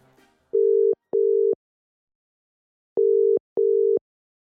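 A phone line ringing on the caller's end during a call to a local writer in Seattle: two clear double-beep rings of a steady, mid-pitched tone, separated by a pause, with no one speaking.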